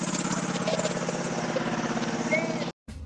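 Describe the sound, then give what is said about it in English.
A small lawn mower engine drones steadily with a rapid, pulsing low rumble and buzzy overtones, then cuts off abruptly near the end before a brief burst of noise. “We're going to take a short break while the lawn mowing takes place.”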